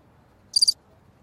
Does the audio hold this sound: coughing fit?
no